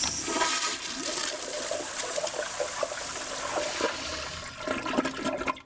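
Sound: toilet flushing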